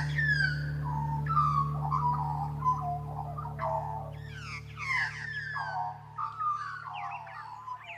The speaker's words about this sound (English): The local bird has unique charms. Once you pay attention to a magpie's voice, you can't unhear it. And after mentally connecting that voice to those big, playful black and white birds, bird watching becomes a whole lot more interesting.